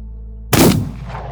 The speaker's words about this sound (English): The second man lets out a strangled gasp, and the first man puts a bullet in his head.